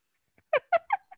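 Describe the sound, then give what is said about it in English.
A person imitates a dog with three quick, high-pitched yapping barks in a row, followed by a softer fourth yip, otherwise quiet. “I can impersonate a dog.”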